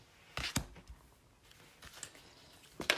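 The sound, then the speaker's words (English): Archetype cards being shuffled and pulled, with sharp papery snaps and flicks in a couple of quick bursts, followed by quieter rustling and another crisp snap at the end. No one speaks. “And when I'm done shuffling and pulling the cards, I'll tell you why I laughed.”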